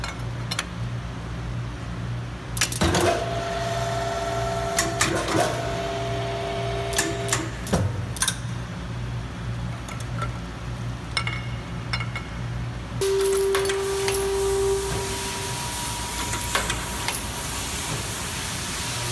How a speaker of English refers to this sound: We also sell multiple spindle heads. This is an example of one of many that we sell. This unit here can be put into virtually any hole pattern that you need to give you very efficient drilling and tapping for your high volume needs.